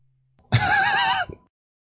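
A horse whinnies once: a loud, wavering high-pitched neigh lasting under a second, tapering off with a short snort, with quiet before and after.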